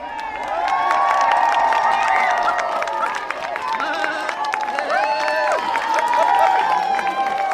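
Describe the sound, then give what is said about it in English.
A crowd of children cheers and shouts continuously, high excited voices overlapping with scattered clapping, staying loud and steady throughout with brief swells of shrieks. “Okay, the children are being reminded to do big cheers.”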